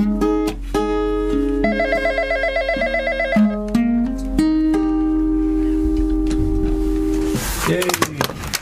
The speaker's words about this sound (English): Sorry about the phone going off in the middle of that one. It's all right. Sorry, just on it. Yeah. It's what happens. We do a live radio broadcast, and people are that excited that you ring you up when you're actually on live.